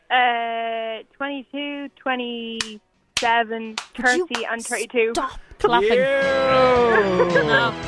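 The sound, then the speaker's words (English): A run of sharp, irregular hand claps cuts through a wavering, sing-song voice, with a few sparse claps first and then a quicker cluster before the voice swells and carries on. “Stop clapping.”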